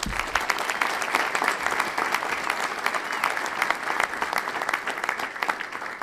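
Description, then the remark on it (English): An audience claps steadily for several seconds, a dense, even patter of many hands at a constant loudness with no voices rising above it. “So I'd like to give her a round of applause.”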